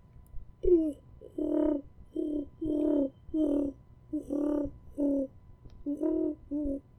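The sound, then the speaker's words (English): A person imitates pigeon cooing with a run of about ten low, throaty, rounded hoots in a steady rhythm, each short and fairly loud, with no other talking. “It was me trying to do a pigeon, and then my throat was like, you slept with your mouth open and the CPAP on tonight.”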